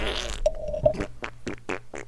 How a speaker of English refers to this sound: Hey, speaking of farts